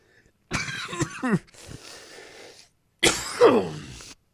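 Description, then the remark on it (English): Loud coughing in two bouts: a quick cluster of harsh hacks trailing into a rough breathy rasp, then after a short pause, one long strained cough fit. No talking. “By the way, I don't have a cough button.”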